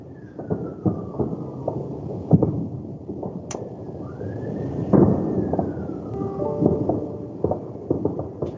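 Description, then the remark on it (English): New Year fireworks crackle and boom outside the window in a steady, irregular barrage of muffled pops and low thuds, with a faint wailing police siren rising and falling in the background. “Do you hear all the fireworks?”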